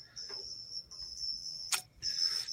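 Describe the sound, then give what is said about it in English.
A thin, high-pitched electronic buzz from a microphone that sounds like chirping crickets, trilling steadily with brief gaps and a sharp click near the end. No one speaks. “I think your mic is a little buzzing there in the ears there.”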